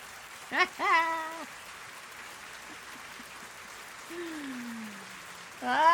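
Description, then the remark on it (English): A crowd applauds during a speech in a steady, dense patter of clapping throughout, with a few loud, pitched vocal whoops and cheers rising over it at the start and end. “That lady's not clapping. She's kind of clapping.”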